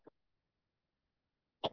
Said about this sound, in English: excuse me, it's almost as if we're all, sorry, coughs.